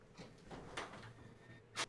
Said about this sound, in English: So, because I can hear the door shut and then your feet.